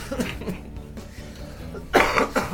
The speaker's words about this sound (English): Sorry, I'm still coughing everywhere.